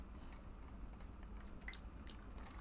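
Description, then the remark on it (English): Quiet mouth sounds of someone sipping a yellow alcoholic mixed drink, with a few soft wet slurps and swallowing noises over a low background hum, no talking. “You take a sip and tell us how it feels.”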